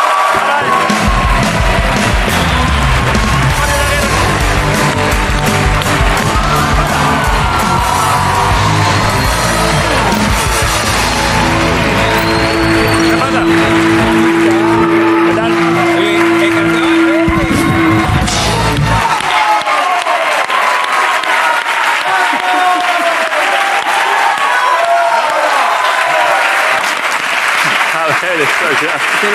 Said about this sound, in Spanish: Así que pido un aplauso para Boris Itaguirre, la Resistencia.